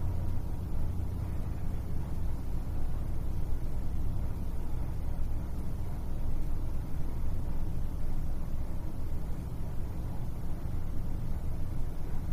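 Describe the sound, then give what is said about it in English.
A steady, low rumbling hum of air conditioning with traffic droning outside fills the space without a break. No voices or distinct events stand out. “Direct your attention to the sound of the air conditioning and the traffic outside.”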